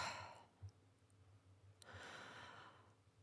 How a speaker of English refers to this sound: As I'm doing this, I'm automatically yawning, and that's okay. When we yawn, it's a sign our nervous system is starting to downregulate.